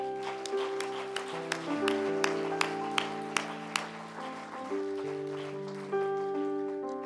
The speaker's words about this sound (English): You are God, and we love you for it. Could we give him a clap?